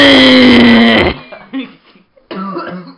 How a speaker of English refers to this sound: No coughing allowed.